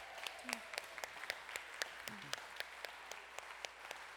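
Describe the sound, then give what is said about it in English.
A crowd applauds steadily, with sharp, irregular claps layered over a dense wash of clapping, and a few brief voices calling out underneath. “Let's cheer for my friends, all right?”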